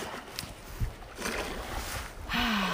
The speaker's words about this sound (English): We can sit here and we can just stare in one direction and the clouds are going to change and the color of the water is going to change. The sound of the water, the wind.